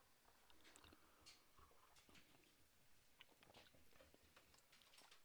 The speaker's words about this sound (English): Let's start with, you want to do our first sips of our coffee of the day?